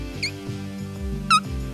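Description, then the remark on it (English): Two short, high-pitched squeaks made with the mouth as a signal to change the subject, one early and a louder one near the end, sounding like mouse squeaks over a steady low droning background. “making squeak noises”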